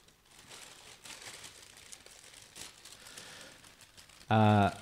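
A brown paper bag crinkles and rustles steadily for several seconds as a banana is added to it, then a sudden loud, tonal burst cuts in at the very end.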